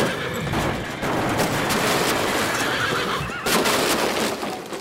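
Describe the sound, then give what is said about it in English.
A horse whinnies loudly while hooves clatter in a steady clip-clop, busy with no voices, the noise briefly dropping out near the end before resuming, depicting Theodore Roosevelt's horse-drawn carriage in Pittsfield, Massachusetts, in September 1902, before a trolley hit it. “In September of 1902, as he's driving through Pittsfield, Massachusetts, a trolley pummels into his horse-drawn carriage full speed.”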